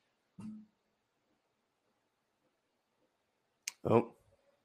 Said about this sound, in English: Are we here? Are we connected? Yep, there you go. You're back.